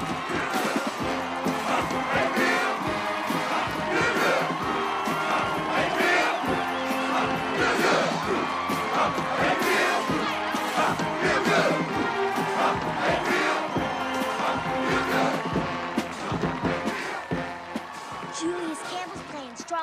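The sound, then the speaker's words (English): A large capacity stadium crowd roars and cheers steadily at full volume, a dense wash of shouting voices and whoops that stays loud throughout, as the Titans football team comes out to play the Groveton Lions. “They're playing in front of the capacity crowd for the first time this season.”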